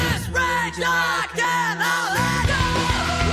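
A loud, dense rock passage in the build-up to the chorus, where a male singer's harsh screamed backing vocals are synced under a sustained sung lead melody full of rage, both voices driving together over heavy instruments for a few seconds.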